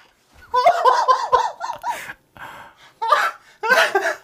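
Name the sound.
voice imitating a horse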